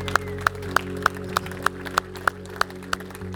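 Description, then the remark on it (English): Steady, evenly paced hand claps, about eleven sharp claps in quick succession, ring out clear over a low, constant background hum, with no voices; a church audience giving the Lord a clap offering. “Let's give the Lord a clap offering and just thank him.”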